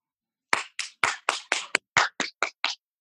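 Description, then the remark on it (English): Hands clap about ten times in a quick, steady rhythm, each clap sharp and distinct, with no voices heard, as people up on roofs in New York clap at 7 o'clock. “It's 7 o'clock. People are like up on roofs right there, clapping.”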